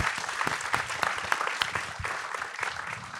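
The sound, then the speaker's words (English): A crowd applauds the panelists at an event with sound professionals, steadily, a dense wash of overlapping hand claps with sharper individual claps popping out, holding a fairly even loudness for a few seconds. “So let's give it a hand for our lovely panelists.”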